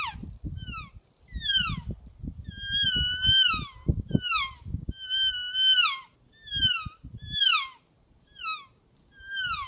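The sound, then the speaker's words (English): A Real Game Calls Elk Reel elk call, made in Gypsum, Colorado, gives a string of high, downward-sliding mewing chirps, about a dozen in an uneven rhythm, with low rumbling thuds beneath the first half. “Real Game Calls featuring the Elk Reel.”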